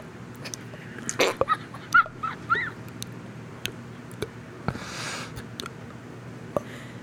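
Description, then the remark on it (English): Heavy, wet breathing of a person who says they are cranked, with saliva heard at the back of the throat, scattered mouth clicks and snuffling sounds, a few short squeaky catches, and one longer hissing breath, all fairly quiet over a low background rumble. “This is my normal breathing.”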